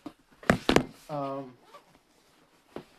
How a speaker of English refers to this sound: Sorry, that was me hitting my foot, my steel-toe foot against the door to close it, which didn't really work out that well because I just like bam, instead of using my heel instead, which works a little bit better.